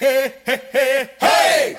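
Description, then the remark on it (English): Young voices shout three quick, rhythmic "hey" calls, then break into a louder, sustained cheer, loud, a short children's cheering sound effect. “I think it's wrong that you've put kids sort of cheering to her getting wet.”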